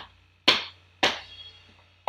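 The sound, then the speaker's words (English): Three sharp, dry smacks on a plastic pad of a Roland TD-25KV electric drum kit in a flat, unevenly spaced with a longer gap before the last, each snapping loud then fading quickly over a faint low hum, with no talking. “I mean, that just sounds like you slapping a bit of plastic.”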